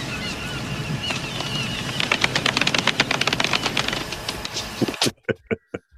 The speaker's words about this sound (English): Golf clap. Golf clap.